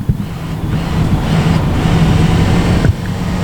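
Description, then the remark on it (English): A diesel boat engine drones steadily at a low pitch as the throttle is opened, its loud hum running throughout under rushing wind noise, with a brief dip near the end before it carries on. “Hear that diesel motor humming?”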